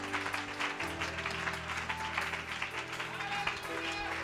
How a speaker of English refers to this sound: Why don't we give the King of Kings and the Lord of Lords a great hand clap of praise tonight?